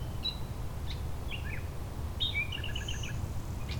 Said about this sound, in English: There's our blue-winged warbler.